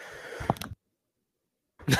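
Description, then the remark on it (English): A cough: a rough, breathy burst, then a second of silence before another harsh burst begins at the end. No speech. “Need a cough button.”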